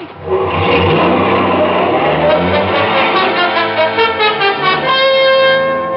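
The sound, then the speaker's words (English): A car engine revs hard and accelerates, its loud, steady roar rising in pitch and pulsing slightly toward the end as the car speeds away out of a parking lot, behind a line of parked cars. No one speaks. “His friend took off, staying behind a line of parked cars until he was clear of the parking lot and far enough away so I couldn't get in a good shot.”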